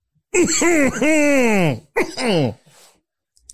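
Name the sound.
sneeze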